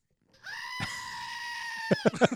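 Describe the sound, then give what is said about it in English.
A Screaming Goat toy, a little billy goat figure a couple of inches tall, lets out one long, loud, strained bleating scream lasting over a second when its base is pushed, followed by a few quick clicks and rustles as it is handled. “Yeah, it's like a little billy goat thing. Oh. And he screams.”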